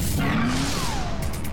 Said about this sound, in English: Here's traffic.